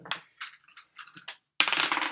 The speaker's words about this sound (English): Well, finally, we're going to be exploring different builds for the Shugenja. So let's roll some dice.